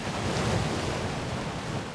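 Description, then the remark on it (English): Waves wash against the rocky coastline at Black Point, Rhode Island, soon after sunrise in winter, in a steady, continuous roar of surf, with some wind rushing across the microphone and no voices. “Soon after the sun rises over this rocky coastline”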